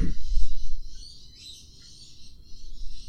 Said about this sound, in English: There's birdies outside. Stupid birds. Shut up, birds.